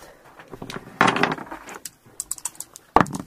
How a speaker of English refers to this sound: And now I have to roll for damage. Roll for damage. That's 2d6. Let me just move my other dice out of the way.